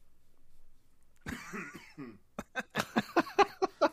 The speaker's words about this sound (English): He just coughs.